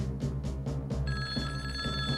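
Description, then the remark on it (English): A telephone rings with quick, rhythmic pulses over a steady low hum as Dusty makes a phone call, then bright sustained electronic tones join in partway through. Fairly loud, with no one speaking. “And sure enough, with his mom still sick, Dusty makes another phone call.”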